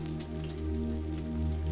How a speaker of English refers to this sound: as the rain trickles down the windows